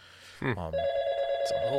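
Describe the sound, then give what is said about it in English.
A telephone rings for an incoming call, a steady, unbroken electronic tone that holds for over a second, with bits of voice before it and faintly near the end. “On the bell again. We've got another call.”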